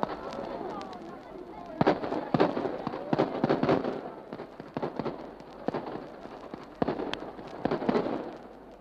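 A ceremonial rifle volley, a triumphal feu de joie fired by a party from the Dublin battalions of the Force Secusanta Oituil, crackles down a long line in a ragged sequence of sharp, loud shots, about a dozen spread unevenly over several seconds, fading almost to inaudibility and returning, over a steady murmuring background.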